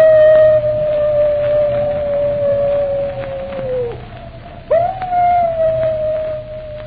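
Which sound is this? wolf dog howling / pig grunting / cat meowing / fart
wolf dog howling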